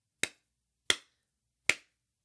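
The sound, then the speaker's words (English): Three slow, deliberate hand claps, evenly spaced about three-quarters of a second apart, each crisp with a quick decay, with silence in between and no one talking. “Gotta slow clap that.”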